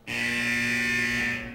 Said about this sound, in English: Red lights started flashing, followed by an obnoxious alarm blare.